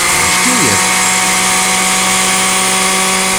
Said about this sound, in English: Right after this word from one of the fine members of the Poison Creek Mall Merchants Association so they can run the blender.